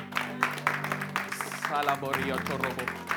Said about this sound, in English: Come on, give the Lord the best clap offering right now.